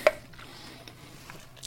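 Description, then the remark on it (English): A sharp, crisp crunch of ice being chewed, followed by a few faint, scattered crackles and clicks as the chewing continues quietly; no one speaks. “I'm chewing ice, so it's okay.”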